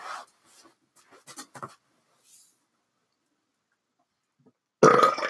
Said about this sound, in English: I had that burp stuck. You looked at me square in the eye. I wanted you to know. That you were holding it. It was a power burp move.